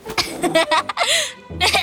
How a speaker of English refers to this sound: At this time, someone was coughing in the corner.